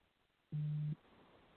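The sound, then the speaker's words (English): A single steady electronic phone beep, a low pure tone lasting under half a second, sounding clearly and moderately loud over quiet background hiss. “Stupid phone.”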